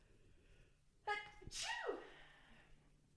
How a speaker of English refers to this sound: sorry, I have to sneeze,